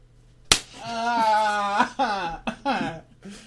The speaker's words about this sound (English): Oh, right. He wants me to do the slap thing. Yeah, the slap thing.